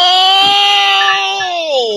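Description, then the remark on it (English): A man's voice holds a loud, strained, buzzy tone in imitation of a motorcycle revving, steady for over a second before the pitch slides downward at the end. “Man, you sounded like a motorcycle revving up”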